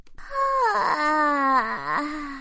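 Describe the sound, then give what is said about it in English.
A voice imitates a long, drawn-out yawn of a sleeping cloud as it stretches, rising then sliding down in pitch with a groaning, wavering tone. It is fairly loud and lasts about two seconds with no other sounds. “The sleeping cloud stretched and yawned while taking them back to the pond.”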